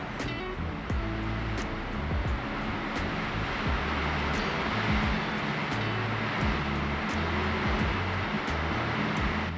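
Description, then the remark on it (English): Strong wind roars steadily in Chinook, Washington, for the whole stretch, a dense, rushing noise with a deep low rumble underneath and occasional sharp ticks and buffets. No one speaks. “Wow, that wind is really going.”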